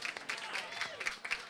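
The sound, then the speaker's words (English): A trivia night crowd applauds team number 17 with dense, steady clapping that stays fairly even in loudness throughout, with a few sharper claps and cheers poking through the wash of hands. “Round of applause, team number 17.”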